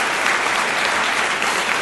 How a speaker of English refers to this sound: And to all of the people who had the guts to get up and ask questions, and even the ones that didn't get through and people I didn't call on, thank you very much for participating, and round of applause to them.